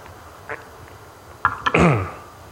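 A faint small cough, then a cluster of sharp coughs ending in a longer, rough, raspy hack, with quiet background noise in between and no talking; a lingering cough that has hung on since COVID a few weeks earlier.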